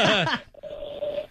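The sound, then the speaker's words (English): A brief burst of a caller's garbled, distorted voice over a bad phone line into the Mike Calta Show radio program gives way to a steady electronic whine that holds for most of a second, loud. “Oh, your phone's terrible, sir.”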